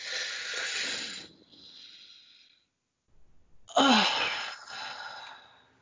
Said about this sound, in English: all of the positive things that you could be doing with your life right now, and just breathing out, what, stupidity? Yeah, go on then. All right. All right, on the count of three. 1, 2, 3.